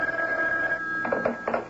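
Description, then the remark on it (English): A telephone rings with a bright, steady electronic tone, then short pulsing bursts of ringing repeat in quick succession. No one speaks. “Go ahead, pick it up, Sam. Pick it up.”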